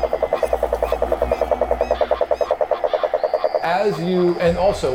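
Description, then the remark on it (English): A rapid, steady chorus of frogs croaking in a dense pulsing rhythm, loud, as the frogs sit lined up around an edge catching mosquitoes, before a rougher, different sound takes over near the end. “Frogs lined up getting mosquitoes around the edge of the thing.”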